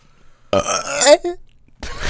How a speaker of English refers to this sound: To burp into the mic.